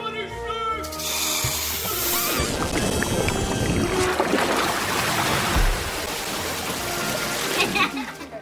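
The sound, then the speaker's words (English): A sound effect of boiling water filled with snakes and snake farts being thrown over a castle wall: a loud, continuous gush of splashing, churning water with hissing and rude sputtering noises mixed in. A brief tonal cry opens the effect, which lasts several seconds. “telling a story about boiling water filled with snakes and snake farts being thrown over a castle wall, you can use sound effects to make that scene come to life.”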